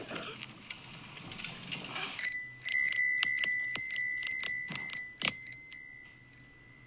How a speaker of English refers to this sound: give me a little bell.